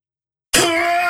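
After half a second of silence, a single loud throat clearing from a person with a cold erupts, rough and wet-sounding, with a sustained raspy, slightly tonal rattle that continues to the end.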